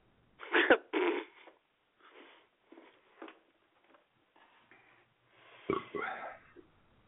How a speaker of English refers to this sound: Oh, that was a pop burp. So. That was a Pepsi burp, so it's allowed.